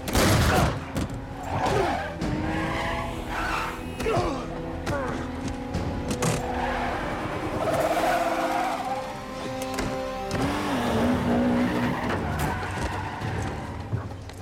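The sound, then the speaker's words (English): A car races hard through turns, its engine revving and rising in pitch while tires squeal and skid, with sharp bangs and crashes layered into a loud, busy chase scene. “All of a sudden, like he's just careening around these turns and like throwing off all the bad guys and what.”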